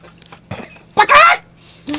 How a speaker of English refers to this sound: We got chickens running around.